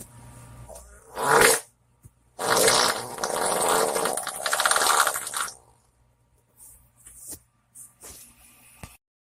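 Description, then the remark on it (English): A short, sharp blast is followed by a long, loud, sputtering wet fart lasting about three seconds, then a few faint rustles as it trails off. “Yeah, that was a very wet fart.”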